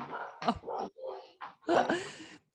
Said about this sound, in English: I'm going to disappear for 1 minute just to shut my window here. Oh. Barking dogs, yeah.